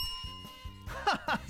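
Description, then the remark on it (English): A doorbell rings twice in quick succession, bright chimes following a quiet stretch with a faint steady hum underneath. “Ring, ring. Doorbell.”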